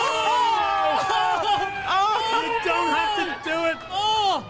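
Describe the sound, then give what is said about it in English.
A crowd of many voices shouting and cheering at once, urging a man to take off his robes: a dense, loud, continuous roar of overlapping yells with rising whoops, energetic throughout. “Everyone's shouting, looking for it to happen.”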